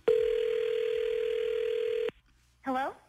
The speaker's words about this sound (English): are you ready to make this phone call? I am so nervous, but yes, let's do this.